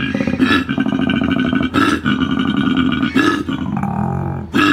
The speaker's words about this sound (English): That was a koala.